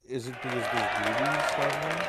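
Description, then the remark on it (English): A burst of applause sound effect: dense, steady clapping that holds loud for about two seconds, with voices whooping and cheering on top of it. “Put the claps.”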